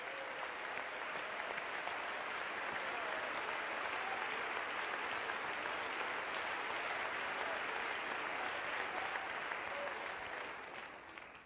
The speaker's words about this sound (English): Would you clap your hands to the Lord right now? Let's give him some praise.